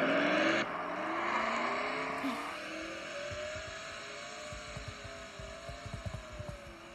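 Race car engines drone and whine on a dirt track, a steady roar with shifting pitch as cars circle, plus low thumping rumbles toward the end. No one speaks.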